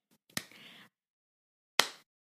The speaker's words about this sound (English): I did a slow, silent clap. But I can do a real clap. There you go.